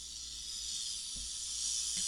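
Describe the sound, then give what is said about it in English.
A snake's tail rattle makes a steady, continuous dry buzz for the whole stretch, fairly loud, with no pauses and no voices. “Then there is just regular rattling, obviously.”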